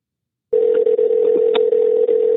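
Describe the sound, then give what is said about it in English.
An outgoing phone call's ringing tone, placed live on air during a radio show: one loud, steady electronic hum that starts abruptly and holds at a constant pitch without breaking. No one speaks over it. “Yeah, it's going to his voicemail.”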